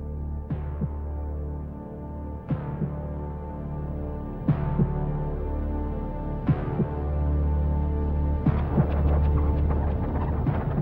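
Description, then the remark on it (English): A sustained single-chord synth drone hums steadily while a slow electronic heartbeat thumps at regular intervals, about every two seconds; the texture grows busier and brighter near the end. This is the intro of the album version of a song. “But I love on the album version, which has this one chord synth intro and the sound of an electronic heartbeat.”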